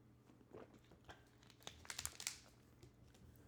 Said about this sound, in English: You know what? I'm going to take a sip of water before I do this. Hold on.